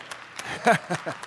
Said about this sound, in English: Now we get to practice cheering them on. Yes!